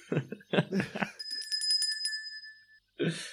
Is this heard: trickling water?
no